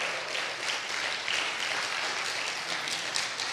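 Sustained audience applause, a dense, steady wash of many hands clapping at fairly even loudness throughout, with no voices rising above it.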